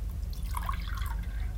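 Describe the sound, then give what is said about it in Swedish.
Water pours briefly into a glass, a bubbly gurgle with a few rising drips over a low steady hum, lasting under two seconds. “Ta lite vatten.”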